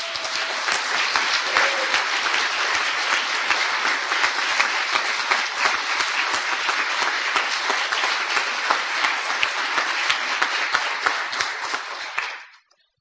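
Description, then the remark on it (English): An audience breaks into a sustained round of applause for the people who organize the contest, dense overlapping claps holding steady and loud for about twelve seconds before fading out quickly at the end. “This takes the dedicated efforts of a lot of people, and I'd like them all to stand up, and let's all give them a round of applause.”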